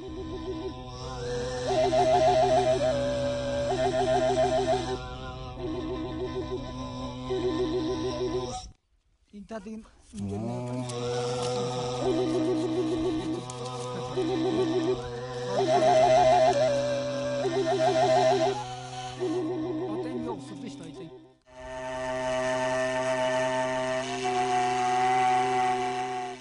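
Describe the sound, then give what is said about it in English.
A wooden tsuur pipe, played by touching the mouthpiece with the front teeth while the throat produces a drone bass, gives a breathy, whistling melody over a steady, buzzing throat drone, in three long phrases separated by brief pauses, the high tune wavering and stepping above the constant low hum. “as it is performed by touching the mouthpiece of a pipe with one front teeth, creating a clear and gentle whistling sound, and simultaneously applying one's throat burden, producing a drone bass at the same time.”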